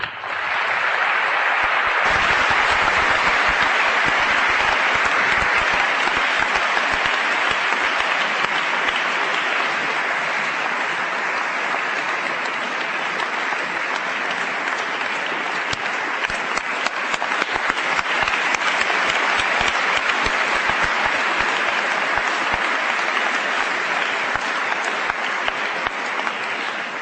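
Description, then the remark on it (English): A large audience applauds the speakers, clapping steadily for nearly half a minute, a dense, even wash of applause that stays loud throughout with no voices breaking through. “Thank you very much for listening, and I want to thank our speakers again, and perhaps you'll give them all a round of applause.”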